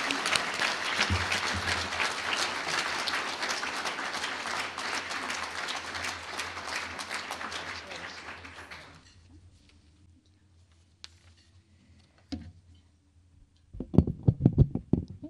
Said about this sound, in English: Let's give Inside Out Reentry a round of applause for its outstanding work.